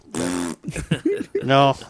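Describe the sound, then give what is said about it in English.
A person makes a buzzing, raspberry-like fart noise with their mouth, delivered as a loud sputtering burst, a few shorter blats, then another long flappy one. “That's not a gorilla fart.”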